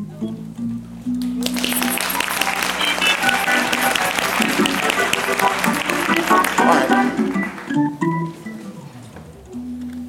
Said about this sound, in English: If you will, if you hear and you one of them, just jump to your feet and give God a clap.